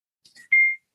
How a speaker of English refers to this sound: Oh, did our timer go off? Did you hear the dings?